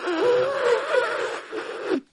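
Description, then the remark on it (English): One long nose blow lasting about two seconds, a breathy rush of air carrying a wavering, whiny honk that ends abruptly, with no talking. “Okay, I blew my nose.”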